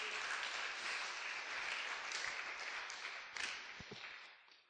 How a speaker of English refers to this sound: You can have a sit down now. And everyone will give you a cheer as you go.